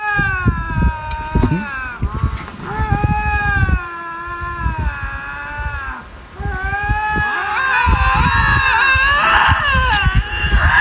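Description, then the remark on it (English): Loud, overlapping animal screams: a lynx's yowling caterwaul layered with goats' bleating screams, wailing almost continuously, with harsh rising and falling cries piling over one another. “All right, so what do you get when you have the lynx and the goats together?”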